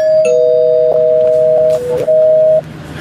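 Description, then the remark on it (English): A bell rung as a spoiler warning rings out loud, its bright two-pitched tone holding steady for a couple of seconds before cutting off. No one speaks over it. “No, but I did ring the bell. I'll ring the bell again.”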